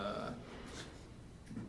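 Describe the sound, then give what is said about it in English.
A single drawn-out burp rumbles low for over a second, steady and voiced with a slight rise at the end, with no talking around it. “I had a burp coming up, sorry.”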